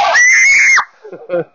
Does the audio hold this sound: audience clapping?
no